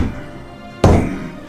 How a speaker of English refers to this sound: But, you would hear the sounds of giant footsteps from while you're talking.